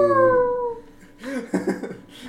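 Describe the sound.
A person imitates a dog's howl, giving Sparky an inspirational howl, with one drawn-out, slightly falling wail lasting about a second, loud. It fades into brief, lively chatter and laughter-like voices.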